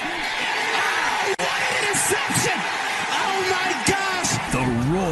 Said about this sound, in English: Crowd.